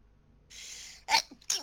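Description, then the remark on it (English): A single loud sneeze: a half-second hissing intake of breath, then a sharp explosive burst and a quick second snort. No one speaks. “Bless you.”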